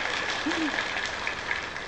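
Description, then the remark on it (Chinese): Steady applause from a group of people, a dense, even patter of many hands clapping at once that holds at a moderate level for about two seconds without a clear break. “好，拍手拍手。”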